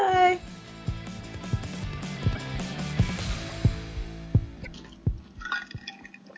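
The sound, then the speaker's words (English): Moist, squishy chewing of rice, with soft irregular smacks and clicks repeating every half second or so over a low background hum, beginning with a brief louder burst. “Chewing on a rice right on the podcast.”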